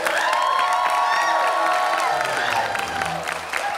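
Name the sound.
audience cheering and applauding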